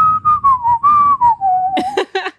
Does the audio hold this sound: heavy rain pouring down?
no